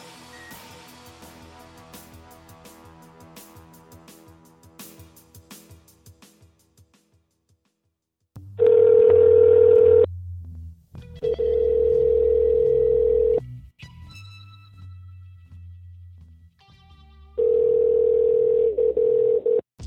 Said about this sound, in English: 500 miles up, the artificial moon is boosted to a speed counterbalancing the pull of gravity and released. You are hearing the actual signals transmitted by the Earth-circling satellite. One of the great scientific feats of the age.